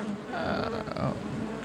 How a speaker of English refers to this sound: Swarm. I said swarm. Like a bunch of bees.